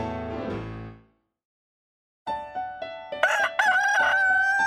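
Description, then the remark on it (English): A rooster crows loudly at sunrise on a Louisiana chicken farm: a short call, a second of silence, then a long, drawn-out cock-a-doodle-doo that rises and holds to the end. No one speaks. “The sun is up. Why, thank you so much, Rooster.”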